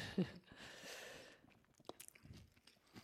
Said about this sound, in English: He's chewing right now, you guys. Mm-hmm. Had to move the mic away.